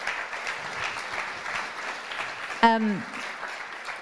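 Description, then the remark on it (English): An audience claps steadily for a church pastor being introduced, a dense, even patter of many hands throughout, with a short voiced whoop rising out of the applause near the end. “Yeah, clap.”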